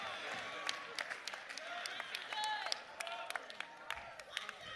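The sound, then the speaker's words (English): A church audience claps during a sermon in quick, uneven bursts, sharp hand claps piling over one another at a moderate level, with murmuring and a few raised voices calling out underneath. “I told you don't clap today.”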